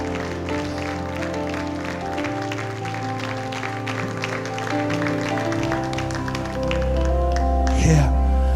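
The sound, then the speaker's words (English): An audience claps in a steady, rhythmic beat over sustained organ-like chords and a deep bass line, with the music swelling louder toward the end. “Come on, come on, come on, clap, come on, rejoice.”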